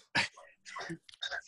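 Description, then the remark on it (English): Someone clears their throat in three short, rough bursts with brief pauses between, fairly loud with no other sounds around. “Let me clear my throat.”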